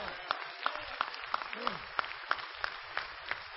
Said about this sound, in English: Go ahead and give the Lord a hand clap.